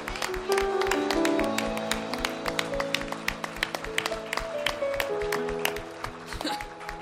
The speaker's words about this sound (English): Let's give Him a hand clap of praise. Let's really clap like He actually deserves it.